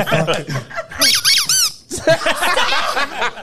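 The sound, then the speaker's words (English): A rubber duck squeaks about four times in a quick, loud burst of high, wavering squeals as someone hits it, at Central Square in Waterbury, Connecticut, with people talking before and after. “I was trying to hit the rubber duck, bro.”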